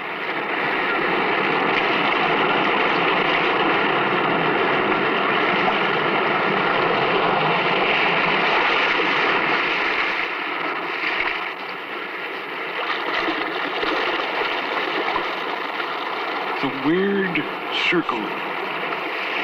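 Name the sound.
restless sea waves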